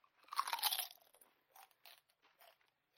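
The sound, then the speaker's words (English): A loud, bright crunch of low-fat kettle chips from a bag being bitten, followed by several shorter, softer crunching chews in an uneven rhythm, with no talking. “I even treated myself to a bag of low-fat kettle chips.”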